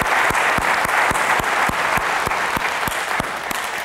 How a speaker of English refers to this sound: Hey, let's give our moms a round of applause. Thanks, moms. Y'all are amazing.